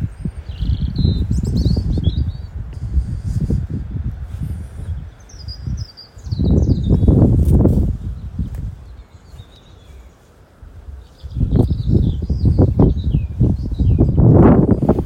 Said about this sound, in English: So windy, Jesus.